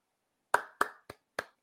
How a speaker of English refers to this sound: I just want to give a round of applause.